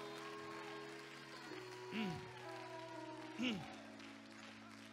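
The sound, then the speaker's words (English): A church audience claps their hands to the Lord in a steady wash of applause over sustained musical tones, with two brief louder rising-and-falling cries breaking through. “Will you clap your hands to the Lord and let's let hell know the church is more alive than it ever has been.”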